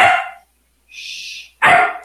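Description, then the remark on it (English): A small dog brought by police barks twice, sharp and high-pitched, with a thin whining yelp in between; loud, with no voices. “They brought a small dog.”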